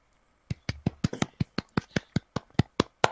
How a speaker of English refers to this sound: That's clapping. I really hope that was clapping. I realized after I started clapping.